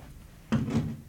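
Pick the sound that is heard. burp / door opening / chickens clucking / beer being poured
door opening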